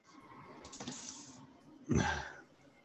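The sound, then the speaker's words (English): A dog named Opie licking itself loudly: steady wet, slurping smacks with a louder, sloppier burst near the end. No one speaks. “Opie, can you stop licking yourself? You're so loud, bro. This dog.”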